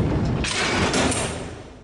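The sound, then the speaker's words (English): A jail door sound effect: a heavy metal jail door slams shut with one loud, harsh clang, then a rumbling metallic ring that lingers for over a second before fading. No voices. “The jail doors going shut.”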